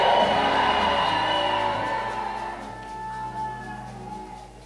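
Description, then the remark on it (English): A large audience shouts a loud, unified, thunderous amen that roars for a couple of seconds, then fades into scattered voices over a lingering, sustained musical tone. “And everybody shouted at thunderous amen.”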